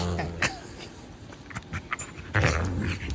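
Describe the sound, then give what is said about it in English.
A pet coyote on a bed growls low and pants, with breathy bursts and rumbling snarls rising and falling over a few seconds, ending in a louder, rougher growl. “Get out of my bed, you coyote.”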